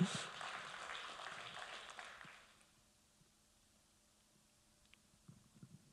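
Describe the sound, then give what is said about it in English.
An audience claps to give God a hand, a dense, steady wash of applause for about two seconds, then it fades away, leaving near silence with a few faint low thumps. “Come on, let's give God a hand. Someone started clapping.”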